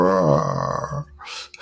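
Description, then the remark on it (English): A voice imitates a lion's roar with a single low, strained, groaning growl lasting about a second, half-hearted and fading, followed by a soft breathy exhale. “Sort of a tired lion, couldn't quite find the energy to roar.”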